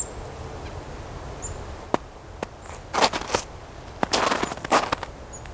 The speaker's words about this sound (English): I hear that pecking there. That's a chickadee pecking at a plant with a bulge in it. That bulge will have a larva inside. If it is what I think it is. If it's a goldenrod gall.